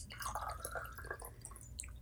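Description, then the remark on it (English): A quick run of small liquid drips and splashes as lemon juice falls into a glass of soju, faint and irregular, with a thin ringing tone early on and no voices. “So if you add a little lemon to it, it kind of like transforms it.”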